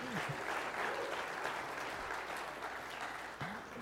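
A crowd breaks into sustained applause, a dense wash of clapping that stays steady and fairly loud for several seconds with no talking over it.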